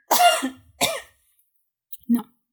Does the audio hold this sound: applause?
no